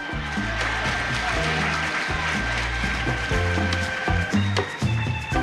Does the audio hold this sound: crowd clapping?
yes